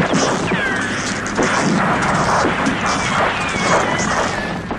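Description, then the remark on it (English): Explosions rumble and crash in a dense, continuous barrage, with whistling tones sliding overhead and a chaotic wash of battle noise at a loud, steady level, in a war film's opening on a World War I battlefield, erupting behind a marching Prussian officer played by David Bowie. “A Prussian officer we will come to know as Paul, played by David Bowie, marches along as explosions erupt behind him.”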